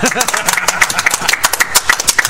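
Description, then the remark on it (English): A crowd breaks into a round of applause for players who were among the first to get the Wings of the Goddess expansion, many hands clapping in a dense, uneven patter at steady loudness, with faint voices mixed in at the start. “And by round of applause, what do you guys think?”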